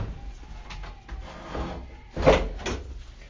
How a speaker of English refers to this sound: Let me shut this door.